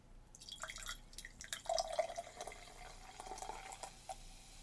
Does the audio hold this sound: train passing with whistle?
no